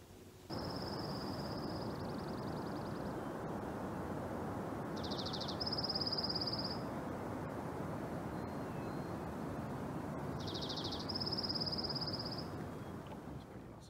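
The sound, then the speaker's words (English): A steady rushing wind blows through trees and fills the whole scene, with birds singing in three short, high bursts of repeated notes, clear above the breezy roar. “Do you ever go on a hike and listen to the wind blowing through the trees and the birds singing?”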